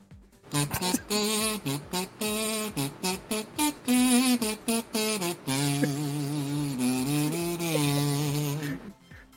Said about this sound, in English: Okay, so … is going to pull out his kazoo and perform through Thaddeus.